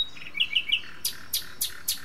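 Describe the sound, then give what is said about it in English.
A songbird in a city sings a short phrase of bright, high chirps, first a quick series of whistled notes, then four sharp, evenly spaced up-sweeping calls, clear with no talking. “Great tits, song sparrows and house finches that live in a city, sing at a higher pitch than their country cousins.”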